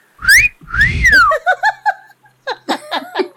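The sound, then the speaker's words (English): A loud two-part wolf whistle aimed at someone: a quick rising note, then a longer tone that climbs and swoops back down, followed by bursts of laughter. “third action is to wolf whistle at Twin Talon”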